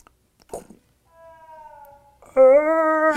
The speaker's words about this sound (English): I love the sound effects. You know what that is, though? That's a pitched down version of the other yells. Yes, because there's a few other yells, and the when the characters die in battle.